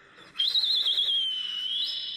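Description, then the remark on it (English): A shrill, high whistle is blown steadily for about two seconds with a slight warbling trill, loud, with no talking around it. “Start the whistles.”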